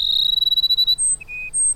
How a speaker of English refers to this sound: Cass and sparrows have waited for the late summer rains to begin their courtship. Now the males sing their plaintive phrases almost nonstop.